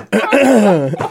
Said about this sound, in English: I'm not normally capable of burping, so I wasn't expecting that to come out. Was that a burp? I don't know. It was some weird... It was a gargle.